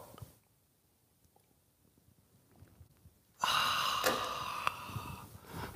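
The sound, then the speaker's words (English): After a few seconds of near silence with faint mouth noises, a loud slurping sip of coffee from a mug runs for about two seconds, followed by a soft breath. “Join me now for the unparalleled pleasure of the dopamine at the end of the day, the thing that makes everything better.”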